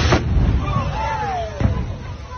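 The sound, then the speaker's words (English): Propane tanks explode at Texas Motor Speedway during the Good Guys car show, after a fire had started: a sharp explosive burst opens over a rumbling, noisy background, followed by a falling whistle-like tone and a second, smaller blast, with murmured voices underneath. “first responders were already there trying to put it out when that explosion happened”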